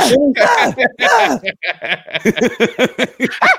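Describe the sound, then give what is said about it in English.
A voice imitates the Homer Simpson scream with the tongue out: loud, swooping wails break into a rapid, sputtering string of short yelps. “I hear the Homer Simpson scream with the tongue out.”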